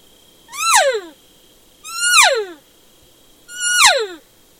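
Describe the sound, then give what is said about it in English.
A hunter uses a call in the woods to make three imitated standard cow calls. They are evenly spaced, each a loud, high, nasal mew that slides downward in pitch and trails off, with brief quiet gaps between them and no talking. “I'll start out just doing a standard cow call so you can kind of get a feel for that, and then I'll go into an Estrus call.”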